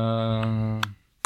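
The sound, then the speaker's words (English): A few sharp, separate keyboard clicks tap out at an unhurried pace as someone types in LGA (LaGuardia) airport, the first ones over a steady low electrical hum that cuts off before the last click. “I'm typing the LGA airport.”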